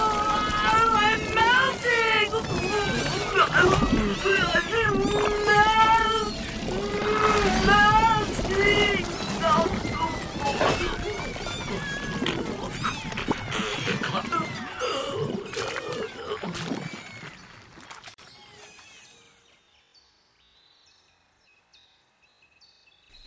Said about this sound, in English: The kittens are going wild. They're no longer contained by behaviour codes.